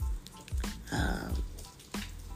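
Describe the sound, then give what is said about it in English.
Steady rain patters outside in North Carolina, a soft, diffuse hiss scattered with brief drips and splashes, fairly quiet and continuous with no talking. “I know it's raining where I'm at here in North Carolina.”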